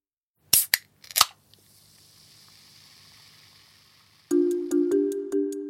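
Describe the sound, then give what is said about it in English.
A can of soda is opened with a few sharp metallic clicks and pops, then a soft, steady fizzing hiss, followed by a louder humming tone broken by rhythmic ticks. “So that sound sounds like opening a can of something. Like a soda or a water.”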